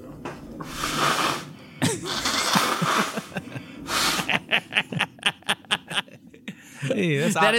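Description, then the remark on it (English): A man at his computer blows his nose: long, noisy, breathy honks, then a quick run of short snorting puffs, ending with a brief voiced grunt. “That is a man at his computer clicking his mouse on a recording and blowing his nose.”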